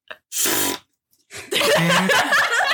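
A short, loud fart bursts out, followed after a brief pause by a longer raspy, sputtering stretch mixed with what sounds like laughter.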